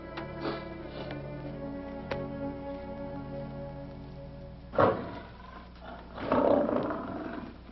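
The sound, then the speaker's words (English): A big cat roars with a deep, rumbling growl that builds into two loud, harsh bursts near the end, with no voices present. “Why is this cat in here?”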